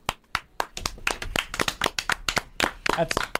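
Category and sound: crowd, people clapping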